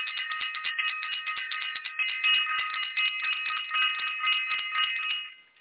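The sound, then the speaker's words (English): A bright, continuous bell ringing rapidly for about five seconds, clanging steadily before tapering off at the end, with no voices present. “Ring the bell for self-invested.”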